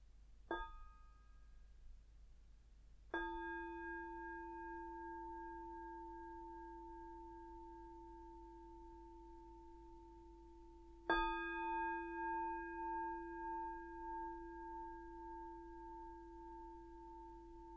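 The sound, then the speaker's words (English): A meditation bell is struck three times to open a guided meditation, alone in a quiet space: a brief first strike, then two full rings whose clear tones sustain and slowly fade with a gentle wavering shimmer. “So now we're going to do a guided meditation on awareness of our emotions, and I'll start with 3 sounds of the bell and the usual settling in introduction.”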